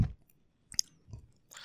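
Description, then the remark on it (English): Chewing of candy, with a few sharp, crunchy bites and wet mouth sounds spaced irregularly through a short, otherwise quiet stretch with no talking. “Don't sniff when you eat.”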